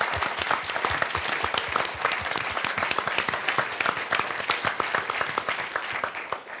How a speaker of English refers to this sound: And so I would like for a round of applause again for everybody, be they here or not.